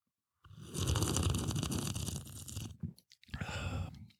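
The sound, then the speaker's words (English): A rough, bubbling gurgle of fizzy water mimics a bong hit: a long rumbling burst of about two seconds, a brief pause, then a shorter, hissier second bubbling burst. “To attempt the bong sound effect with the fizzy water.”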